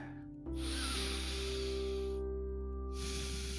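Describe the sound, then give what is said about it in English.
Two long, airy hisses of air drawn in through the nose with the mouth closed, the first lasting nearly two seconds, over a steady low droning hum, with no talking. “If you can, put all of it to the roof of your mouth and just breathe through your nose.”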